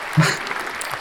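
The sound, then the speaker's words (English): A brief burst of studio audience applause for a contestant's 50% score, a steady wash of clapping hands that holds at an even level for about a second, with a short voice-like murmur at the start. “That thanks, round of applause from our studio audience.”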